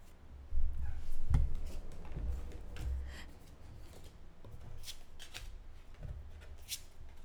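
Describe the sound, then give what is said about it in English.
A small mini deck of cards is shuffled, giving quick papery riffles and soft slaps in a few uneven bursts, with no voices over it. “Do you like my little mini deck shuffle?”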